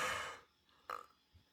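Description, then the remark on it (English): A breathy yawn: a loud rush of exhaled air that fades, then a short voiced burst from the throat, with no talking around it. “Woo, that was a yawn.”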